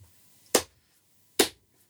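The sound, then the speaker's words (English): A slow clap: two sharp, crisp hand claps spaced nearly a second apart, each bright and punchy, with quiet in between and no talking. “My slow clap, finally! Slow claps, basically.”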